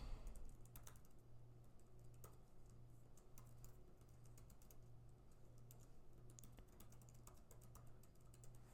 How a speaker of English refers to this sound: Typing ASMR. I love typing.